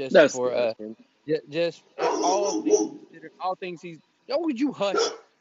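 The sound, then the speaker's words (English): A dog barks in a few short, sharp bursts, mixed in with people talking over it. “I told you hush. That don't bark at me.”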